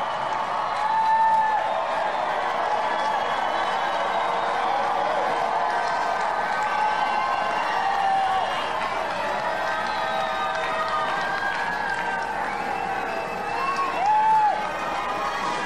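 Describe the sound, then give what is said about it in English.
A large outdoor crowd cheers and shouts continuously as the U.S. President does helicopter flyovers, with scattered whistles rising above the roar. The din stays loud and steady throughout, with no single voice standing out. “POTUS was out there doing his thing, doing flyovers on in his helicopters, and the crowd was absolutely loving it.”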